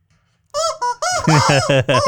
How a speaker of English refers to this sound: I finally got a honking chicken, which much like the goats that scream like humans, is something that makes me laugh every time